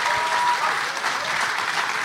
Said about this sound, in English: We need that, lads. A massive round of applause, please,